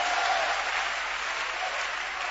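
An audience claps their hands together after the preacher says the Bible tells them to clap, a steady, dense wash of applause that holds at an even level throughout without any rhythm or pause.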